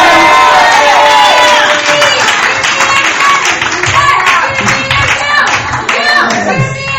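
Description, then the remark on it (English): A crowd cheers loudly and steadily for several seconds as loud as they can with all their voices together, many voices shouting and whooping at once, with scattered claps mixed into the dense roar. “The loudest that you can. With all of your voices together, con todas sus voces juntas,”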